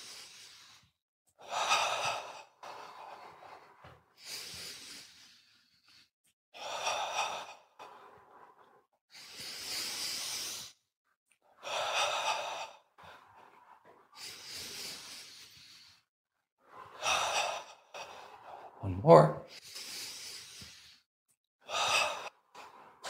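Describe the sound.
Slow, deep breaths drawn in and pushed out during a breathing exercise, about nine in a steady rhythm, each a loud airy rush, taken with eyes closed while swaying the arms forward and back; a voice briefly speaks near the end.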